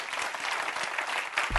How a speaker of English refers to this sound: But in that room, in 1 Samuel chapter 15, on a Wednesday night, that guy gave his life to Jesus, and I'm waiting while somebody claps your hands and get excited about that.